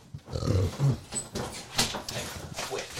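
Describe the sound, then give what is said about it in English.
A dog gives low, rumbling growls and grunts in uneven bursts over a few seconds, with faint background noise and no talking. “This dog's out again.”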